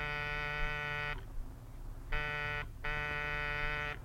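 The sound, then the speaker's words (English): A harsh electric front-door buzzer sounds three times: a long press of about a second, a short gap, a brief buzz, then another long press, loud, with no talking. “Oh, go on. Buzz the buzzer.”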